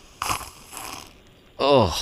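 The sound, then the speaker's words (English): Two noisy, wet slurping sips of a thick mayonnaise and coffee mixture, the combination made infamous by Will Levis, then a short rising-and-falling vocal groan like a gag of disgust, fairly loud against a quiet background. “I'm going to have one more sip.”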